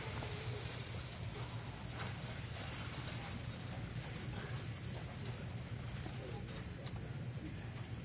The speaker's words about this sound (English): Hope we all have insurance to cover our cover the hail damage being done to our cars out there.